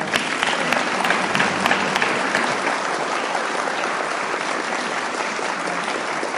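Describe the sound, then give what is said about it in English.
An audience at an Alcoholics Anonymous meeting claps steadily for several seconds for a speaker, a dense, even wash of many hands at a fairly loud, constant level with no voices standing out. “Can we give Pat one more round of applause?”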